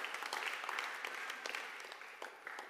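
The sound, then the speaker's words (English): An audience at a morning church service claps for God, many hands producing a dense, continuous patter of sharp slaps that holds fairly loud throughout, with no voices rising above it. “Come on, let's give God a hand and clap this morning.”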